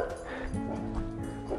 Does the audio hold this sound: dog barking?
yes